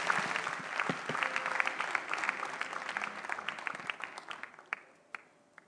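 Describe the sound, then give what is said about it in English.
An audience at a church service applauds to welcome a man who will give a testimony, a dense, steady wash of clapping that thins out and fades after about four seconds, leaving a few scattered final claps. “Please welcome him with a clap.”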